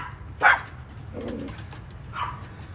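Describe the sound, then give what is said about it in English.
A guard dog barks a couple of times, short sharp yelps spaced apart with a quieter low sound between them; no one speaks. “Our guard dog is not happy.”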